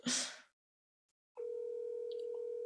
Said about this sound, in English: That's how we make calls. Oh, he's not going to pick up.